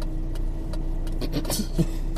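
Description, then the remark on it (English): Cars roll slowly past, a steady low engine rumble throughout with a few brief rattling clicks toward the end, as cars drive through a Hungry Jack's drive-thru lane getting service. “Looks like they're getting some service. A few cars getting through.”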